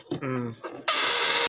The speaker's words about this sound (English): Sorry, I'm playing with the balloon.